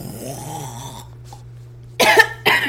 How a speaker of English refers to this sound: I was really hoping for like a spit. That sounded like a old Western. Yeah, that sounded like a, yeah, I was getting something worked up there. Oh wow, look at the audio levels on that snore.